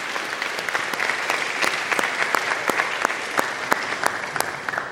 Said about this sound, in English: Graduates, can we stand and applaud those who have supported you this entire time?